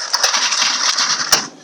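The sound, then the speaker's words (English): Dice, including a round die, rattle inside a box, a dense, bright clatter of many small hard knocks with a few sharper clacks, loud and steady for over a second before tapering off. No voices. “Shall I just rattle this box down here that I know's got one in it?”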